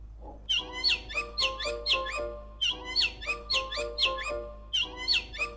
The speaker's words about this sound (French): Je voulais enregistrer les oiseaux. En Martinique, les oiseaux sont partout. Ils chantent tous de manière différente.